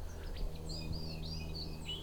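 A white-throated sparrow in autumn runs through its song in a practice attempt, with thin, wavering whistled notes rising and falling over a low, steady background hum.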